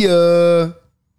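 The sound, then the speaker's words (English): A text message notification sounds: a single steady, buzzy electronic tone, rich in overtones, holding for under a second before cutting off into silence. “No, that's my text message.”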